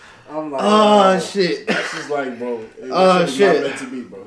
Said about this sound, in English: So I was laughing too hard. That shit started making me cough.